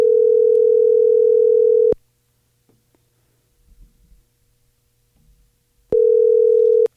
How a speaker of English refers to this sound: So you're dialing a Santa Rosa, California number then? Sure. I think that's where he is. Doesn't mean his phone number came from there.